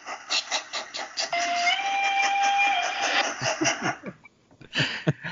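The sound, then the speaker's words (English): A steam train whistle blows one long, steady tone with a slight upward bend, rising over rhythmic chuffing and hissing steam, then the whistle stops while the chugging carries on. “Train's been delayed, but it's arriving at the station.”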